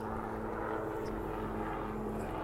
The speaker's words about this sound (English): Oh, there's a loud airplane, man. Come on, dude. Get rid of these old piston engines. They make too much noise, don't they? And they're cheap. And it's a helicopter.